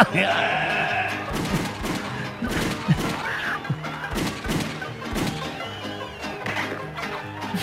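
Sharp gunshots fired at people in a car crack out in an irregular series, roughly a dozen loud bursts spread over several seconds, over a busy, cluttered background with voices and what sounds like chickens clucking.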